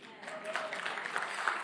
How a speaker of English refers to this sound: Come on, somebody clap.